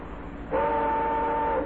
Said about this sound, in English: And that sound. Oh, that's a hated sound. That's a switch engine. I can tell a switch engine. You know what he's going to do with that thing? That guy's going to back and forth across Kennedy Avenue at least 120 times